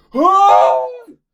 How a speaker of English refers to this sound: and I just scream loudly.